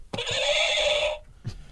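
A loud horse whinny used as a performer's challenge buzzer, a single sustained neigh of about a second with a sharp onset, followed by a brief snort-like burst.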